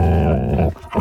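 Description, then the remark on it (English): A huge dog, Tonto, growls loudly as it lunges at a man, a deep rumbling snarl that breaks off briefly before surging back in, with no voices present. “As Clarence rounded the side of the diner, he encountered a huge dog. Tonto growled and lunged at him.”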